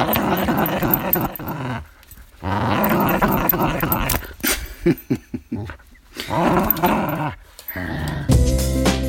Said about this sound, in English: That was a little bit of Rosie you heard growling. That was fun growling, happy growling.